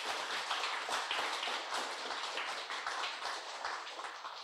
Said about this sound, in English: And amen. Why don't we give the Lord the loudest clap offering that we can give?